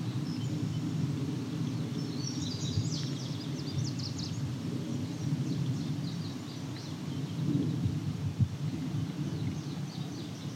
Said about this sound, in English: Not too far from Highway 6 here, so there's a bit of traffic noise. So we got two indigo bunting singing.